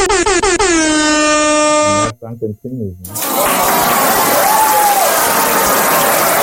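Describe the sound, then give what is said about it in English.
A loud, blaring air horn sound effect sounds for about two seconds, then after a short pause a sound effect of dense clapping and crowd cheering swells in and carries on steadily to the end. “Yeah, where's the round of applause? I'm shitting my that's sound effects.”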